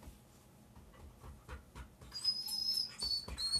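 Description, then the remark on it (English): A dog whimpers and cries, thin high-pitched whines rising after a couple of seconds over soft shuffling and brief bursts of background noise. “And there's my dog crying”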